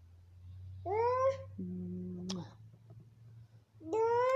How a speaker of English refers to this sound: Kitty.